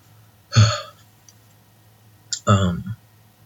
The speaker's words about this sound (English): I love how I managed to still burp on this one.